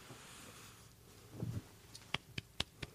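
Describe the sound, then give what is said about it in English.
A quiet golf clap: four soft, crisp hand claps in a quick, slightly uneven rhythm, following a brief low rustle, with no talking. “I'm giving you a little golf clap.”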